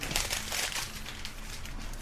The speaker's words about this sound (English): Ow, damn. He threw that paper right in your eye.